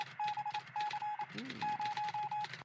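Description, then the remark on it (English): A little bell-like sound effect rings out in three steady, mid-pitched tone bursts, laced with rapid clicking and clattering, ending abruptly. No one speaks. “There's a little bell ring for you.”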